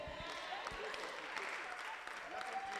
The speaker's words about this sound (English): Are you clapping your hands for the Lord?